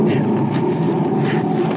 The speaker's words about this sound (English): As they reach the injured man, a flash flood roars down the river, piling water up behind the dam above them.